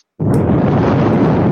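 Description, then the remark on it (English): A deep breath blown straight into a microphone, starting abruptly after a brief silence and continuing as a loud, steady, rumbling rush of air with no talking. “Someone's breathing deeply. That's me.”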